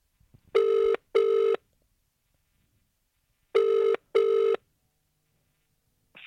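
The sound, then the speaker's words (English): An outgoing call's ringback tone sounds twice, each time as a quick double ring of steady buzzing tone, clear, with silence between the rings and no voices, as a parent calls an experienced woman for advice on potty training a little girl. “So I decided to call her up and see if I could get any advice on the best way to potty train my little girl.”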